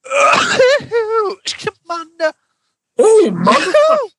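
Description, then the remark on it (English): A voice makes a series of stylized, high-pitched sneeze sounds like a singer, short sharp bursts mixed with squealing, drawn-out vocal noises, with a brief pause before a final long one. “Are you sneezing like …?”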